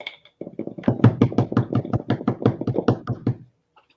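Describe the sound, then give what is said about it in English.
A quick drum roll tapped out on a tabletop before a prize announcement: a rapid, steady run of about twenty loud knocks lasting around three seconds, then stopping abruptly, with no talking over it. “Prize number 2 is, drum roll, please.”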